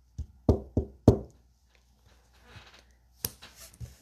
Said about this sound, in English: Alice went timidly up to the door and knocked.